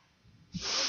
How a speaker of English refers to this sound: Well, I wish the folks at home could do this. Sniff my pits. No. Somebody, please. Put it in there. Put it right in there.